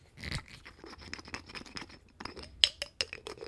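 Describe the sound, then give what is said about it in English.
A screw cap threading on an Elijah Craig bourbon bottle shaped like a barrel: quiet, rapid scratchy rasps and clicks in an uneven rhythm, ending with a few sharper, brighter ticks. No one speaks. “You can kind of hear it threading there.”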